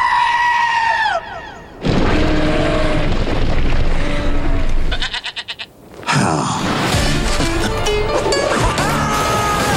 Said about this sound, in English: Oh, hey there. Sorry, little goat.